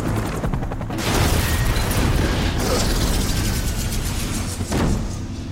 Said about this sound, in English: It was a really romantic movie, Die Hard. McLean's car smashes through a toll booth, launching into the air straight at the chopper.